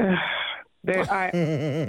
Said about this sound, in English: I just love the gasps, the moans, the groans that we seem to get almost on a daily basis. She sounded almost disgusting, though. Like, disgusted.